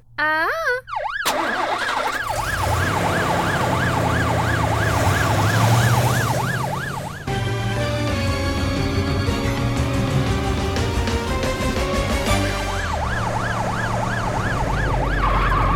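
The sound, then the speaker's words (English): A loud siren of Super Ambulance wails in quick, steady rising-and-falling cycles over a low engine rumble. It gives way midway to a tuneful passage, then the wail returns near the end. “Super Ambulance Goes to the Rescue!”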